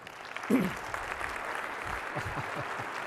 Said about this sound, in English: Please give them a warm round of applause.